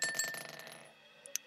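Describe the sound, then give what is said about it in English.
Dice clatter and rattle across a hard tabletop in a roll for a wisdom saving throw, the busy rolling noise fading over a second before two sharp little clicks as they settle, coming to 17. Fairly quiet, with no voices. “Mwah, I'm going to kiss this dice. Wisdom. So that's a 17.”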